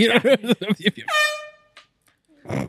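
A loud air horn sounds a quick string of short, rhythmic blasts, then one long sustained blare that fades into silence before a brief burst of noise at the end.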